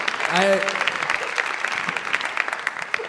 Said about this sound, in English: It's okay to applaud, because I wove that.